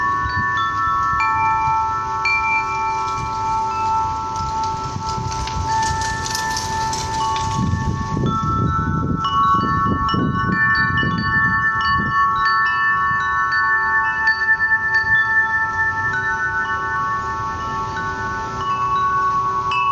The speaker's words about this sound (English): And just when you feel completely overcome with sadness and with loss, the wind will slowly start to move the wind chimes. And all around you, you are surrounded by this beautiful melody that just sounds like love.